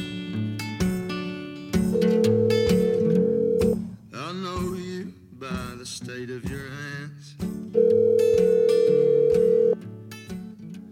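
A phone call being placed: dialing, then two long, steady ringing tones several seconds apart, separated by a short warbling, voice-like passage, all over a busy tonal background.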